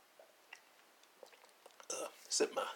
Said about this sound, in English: Sip my apple juice.